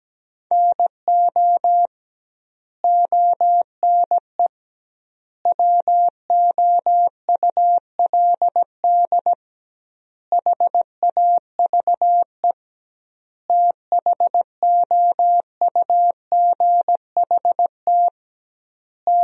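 A steady single-pitch tone keyed on and off in short and long beeps, forming Morse code at 17 words per minute with doubled word spacing, sending sentences built from the top 300 words, with brief pauses between groups and no voices.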